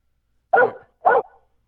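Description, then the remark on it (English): A dog barks twice in quick succession, each bark short and sharp with a brief tail, about half a second apart, heard alone against silence at moderate volume. “Is there a dog barking in the background?”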